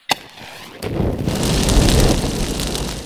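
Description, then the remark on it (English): A bonfire burns, opening with a couple of sharp pops before settling into a steady, loud roar of rushing flames and dense crackling. “And for that, we need to be around that roasty, toasty bonfire.”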